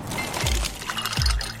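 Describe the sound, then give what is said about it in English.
Ice cubes from a brand new ice maker drop into a fresh glass of water, two distinct plunks about a second apart over a steady watery fizz, fairly loud, with no voices. “Those are the sounds of a brand new ice maker dropping cubes into a fresh glass of water, making this the sound of savings on top brand appliances.”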